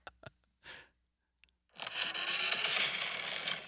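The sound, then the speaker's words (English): A few soft clicks and a breathy puff, then a loud, harsh, rasping sound like a creaky door swinging open, sustained and grainy for nearly two seconds, at the start of a car advertisement. No one speaks. “It sounded like a creaky door opening or something at first.”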